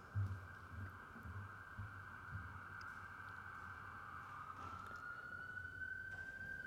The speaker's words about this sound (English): I feel these days, especially when an ambulance passes, we have to take a moment to wish them well.